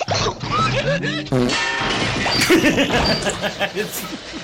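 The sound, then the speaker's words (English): A loud comedic crash sound effect, a sustained clatter of smashing debris, alongside a low buzzy fart-like blat, with faint laughter mixed in. “It's always the fart noise.”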